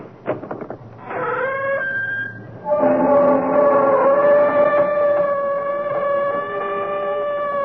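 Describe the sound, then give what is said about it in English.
The creaking door opening of the CBS Radio Mystery Theater: a door creaks open with a few clicks and then a loud, drawn-out groaning squeal that wavers and shifts pitch in stages for several seconds, with no voices. “Come behind the creaking door and leave your good judgment and reason outside.”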